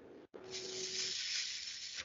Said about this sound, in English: And so when you're doing the dabs, you just heat. It's got a little metal nail on the end. You heat that sucker up with the torch, and then you just poke it in the fucking...